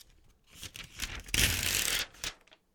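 A piece of paper is ripped out of a notebook for ASMR: a few short crackling tugs, then one long, loud, raspy rip lasting under a second, followed by small rustles.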